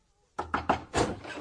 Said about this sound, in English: So it came as quite a shock to my old friend Dolly Bantry when instead of these pleasant sounds she was rudely awakened by a frantic banging on her bedroom door.